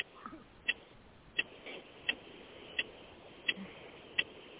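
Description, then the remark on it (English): A clock ticks steadily, six sharp, evenly spaced ticks about two-thirds of a second apart, fairly quiet over a low background hiss with no one speaking. “Please don't play the clock.”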